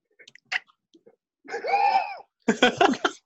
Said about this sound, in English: Sorry, I'm coughing. Oh, no, cover your mouth.